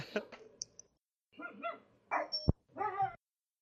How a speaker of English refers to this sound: Barking there. My dog wants to be on the podcast. His name is Otis. He says, woo, woo, woo, woo.